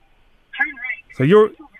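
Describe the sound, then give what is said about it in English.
A brief electronic voice prompt from a car sat nav: two short, clipped bursts of synthetic speech with a thin, phone-like tone, clear, with quiet between them. “So you're on the phone. You're on the sat nav there, are you?”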